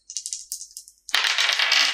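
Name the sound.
six-sided dice being rolled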